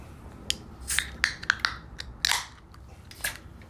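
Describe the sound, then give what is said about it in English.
A beer can being cracked open: several sharp clicks and crinkles from fiddling with the tab, then a brief pop with a short fizzing hiss, and one last click. No one speaks. “Let's crack this first.”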